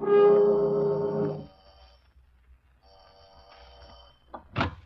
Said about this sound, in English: I got to the end of a long, dark hall and brailed the number on the door and pushed the bell.